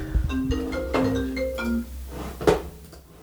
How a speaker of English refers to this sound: Oh, phone call.